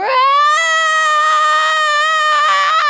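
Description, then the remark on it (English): A voice imitates a howl of rage for a female character who balls her fists, one around an axe, and throws her arms wide: one loud, sustained, high-pitched wail lasting about three seconds, rising slightly at the start and holding steady with a strained, crying edge. “And then she just throws her arms wide and howls.”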